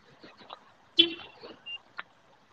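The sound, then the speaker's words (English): A single short, loud car horn beep as a car is locked, with quiet indistinct talking before and after it. “Yeah, no, I'm locking my car.”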